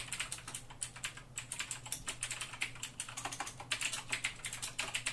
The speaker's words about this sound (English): Sorry for my very loud keyboard. Yep, clacking all over the time. All over the place, even. Just clackety-clack.